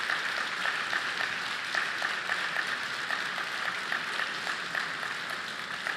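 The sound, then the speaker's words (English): An audience claps steadily for about six seconds, a dense, even patter of many hands, with no voices over it; the microphone is muted while the people clap. “So, yeah, he mutes the microphone while people are clapping.”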